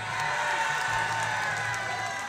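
A crowd cheers and claps in a steady, unbroken roar of mixed voices and applause, holding at an even loudness for a couple of seconds.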